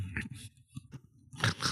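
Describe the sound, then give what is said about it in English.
Someone mimics a man's zombie teeth, like the zombies in the film World War Z, with their mouth: crunchy grinding and sharp clicks in an uneven sequence, building to a louder gnashing burst at the end, with no talking. “And he just keeps grinding. Clicking them.”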